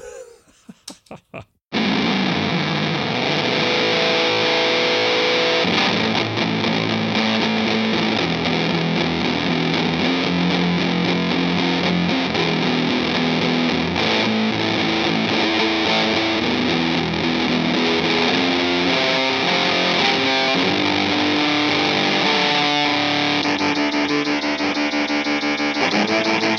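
A heavily distorted electric guitar played through a distortion effects pedal plays loud, sustained chords and riffs, thick and fuzzy, starting abruptly after a brief moment of quiet and continuing steadily to the end.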